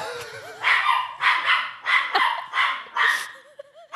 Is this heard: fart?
no